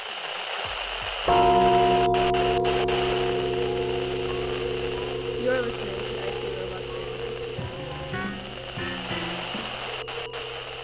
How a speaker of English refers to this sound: Before we get there, though, let's light that incense. Let's bang that gong. Let's get it on.